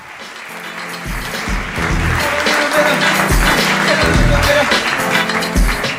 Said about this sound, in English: No, keep, please. Keep clapping, thanks.